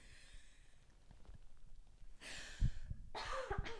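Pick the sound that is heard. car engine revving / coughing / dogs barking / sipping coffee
coughing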